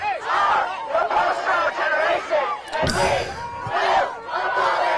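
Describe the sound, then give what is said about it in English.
Loud crowd noise of demonstrators throughout, with many raised voices and a harsh, strained scream from a protester standing out above the din, plus a sharp impact-like burst partway through. “Oh my gosh, this pro voice just started screaming.”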